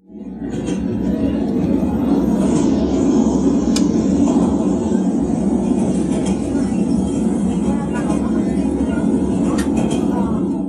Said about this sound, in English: all the passengers on this train, including myself, all have a story to tell.